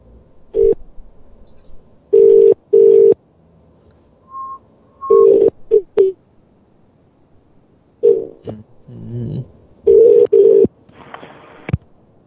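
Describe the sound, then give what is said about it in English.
A telephone line gives off short, steady tone bursts that start and stop unevenly, with a few higher beeps and clicks between them. The sound is fairly loud, and no one speaks. “How do I hang up this phone?”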